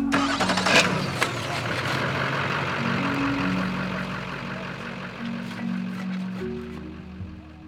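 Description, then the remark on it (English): Truck engines rumble to life and idle with a low, steady drone, the pitch shifting as the loaded vehicles rev and begin pulling away after dark as people leave a campfire gathering, with no one speaking. “They set out the food and sit around in a circle, chatting, gossiping, and poking fun at one another until it's well past dark and it's time to quench the fire, load up the trucks, and leave.”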